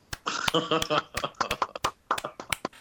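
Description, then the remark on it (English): A series of sharp hand slaps or claps given as a round of applause, about a dozen in an uneven rhythm, with voices sounding underneath. “What's that slapping coming from,”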